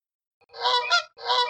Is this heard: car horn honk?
no